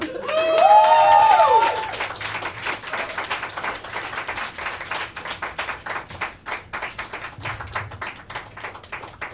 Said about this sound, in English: Y'all, I've asked you every time to clap again for everyone.